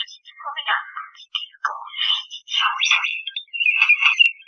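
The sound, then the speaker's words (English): A bird mimics video game sounds with a rapid, varied run of electronic-sounding chirps, warbles and beeps, mostly high-pitched, in short bursts with brief gaps. No one talks. “This is a bird making... He learned somewhere to make video game noises, and that's what this bird's doing.”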